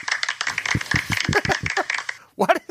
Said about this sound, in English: Was that applause? Yeah, I thought that was a good point.